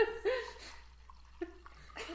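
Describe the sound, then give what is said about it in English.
Wine pours into a glass, a short gurgling trickle with a couple of hollow glugs as the level rises, and a bit of soft laughter in the background. “It was because I didn't want to pour it directly into the”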